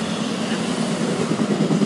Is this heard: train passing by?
yes